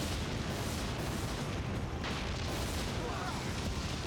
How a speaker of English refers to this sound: Did you see? I mean, that's Japanese footage, but did you see how the flames paused for the explosion effect?